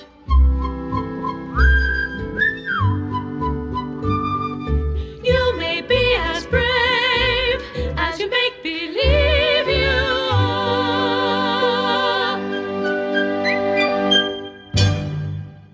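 A bright whistled melody of a show tune from a stage musical rises and glides over a full orchestral accompaniment with a bouncy bass, swelling into lush sustained strings before closing on a final crash.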